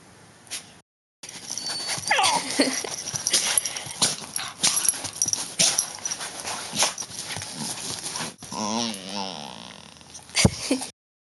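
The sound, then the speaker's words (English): A dog named Paddy making restless yips and whimpers amid scuffling and thumping, with a drawn-out whine near the end and a sharp knock just after. “Do you have a favourite animal? Yeah, my dog, Paddy.”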